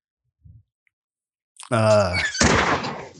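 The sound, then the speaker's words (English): A faint, low thump, then after a pause a loud creaking groan runs straight into a rough, noisy thud-like burst as a door swings and bangs shut. “My God, it's noisy over there. The door.”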